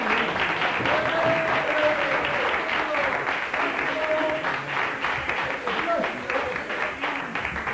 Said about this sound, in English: Here she is. Give her a good clap.